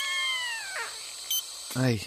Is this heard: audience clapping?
no